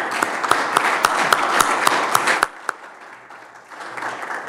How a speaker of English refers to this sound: So if I could have a round of applause for both of them for what they did.